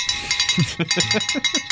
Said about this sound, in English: You want to ring that bell?